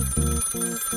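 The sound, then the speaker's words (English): An old-fashioned telephone bell rings in two loud bursts of rapid metallic trilling, separated by a brief pause, with no voices present; a phone call to LaWanda in 1972 from Red Fox. “Then, one day in 1972, she was woken up by a phone call.”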